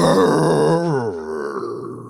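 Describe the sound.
A man imitates a bear roar with one long, loud, guttural growl that starts rough and harsh, then slides lower in pitch and trails off into a raspy rumble.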